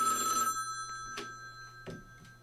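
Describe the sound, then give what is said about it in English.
A telephone rings for an incoming caller to the radio show The Whole Nine on blazeradioonline.com, a steady electronic tone with a brief buzzy burst at the start and a few soft clicks scattered through. It is moderately quiet, with no talking. “And we have a caller.”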